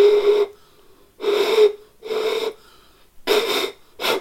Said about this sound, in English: Now, we're just going to try and find some tones that sound nice together by blowing over beer bottles.